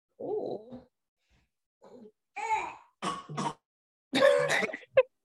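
A series of raspy, hacking coughs comes in irregular bursts, close and moderately loud, with short pauses between them and a sharper final hack. No talking.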